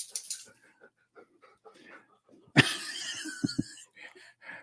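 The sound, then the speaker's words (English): A female Belgian Malinois dog lets out a loud, strained whining complaint for about a second, wanting attention, surrounded by softer breathy panting and snuffling sounds before and after. “Can you see my dog there? You could say Sarah a little bit. Belgian Malinois.”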